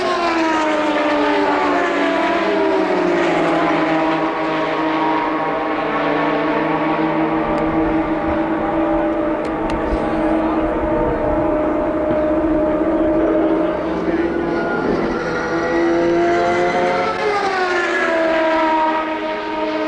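Loud, continuous high-pitched engine whine from Indy race cars at speed at the 1993 Indianapolis 500, layered and droning, with a sharp pitch bend near the end as one car sweeps past.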